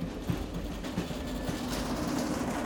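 A train rolls steadily along the rails, a continuous low rumble with faint rhythmic clicks from the wheels passing over track joints.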